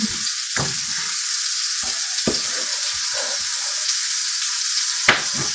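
A steady, loud sizzle of a burger frying in a hot pan on a stove burner, a constant crackling hiss with a few soft scrapes and clinks underneath, with no talking.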